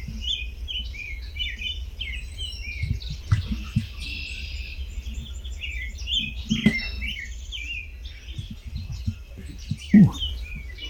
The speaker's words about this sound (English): What do we have? The rob? Quite a bit. American robin, red-winged blackbird.